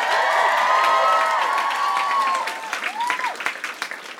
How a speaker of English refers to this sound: Do us a favor. Give a round of applause to NPR for putting this whole thing on.